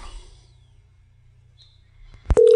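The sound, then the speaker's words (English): After a quiet stretch of low background hum, a click is followed by a loud, steady electronic ringback tone of an outgoing phone call, starting right at the end. “Yeah, I'm calling Busy.”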